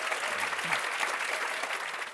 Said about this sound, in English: can we please give them a massive round of applause?